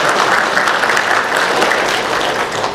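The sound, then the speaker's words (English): A crowd applauds Pam steadily, a dense wash of many hands clapping at an even, loud level for the whole stretch, with no voices standing out. “I know you're applauding for Pam, I know that.”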